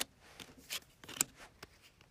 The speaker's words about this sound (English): Okay, I may have messed up this shuffle. I was not paying attention.